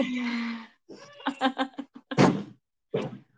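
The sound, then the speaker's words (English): A drawn-out vocal sound, then a quick cluster of knocks on a door followed by a couple of heavier thumps, moderately loud. “You guys need to not knock on the door like that, please.”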